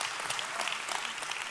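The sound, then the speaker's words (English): A church audience applauds steadily, with many hands clapping at once in a dense, even burst of sound that stays loud for the whole short stretch, with no voices. “You can clap that up, and we participate a lot, too.”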